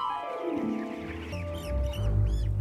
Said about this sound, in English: Check it out, free range chicken. You are living the chicken dream. Look at you, you're a free range chicken.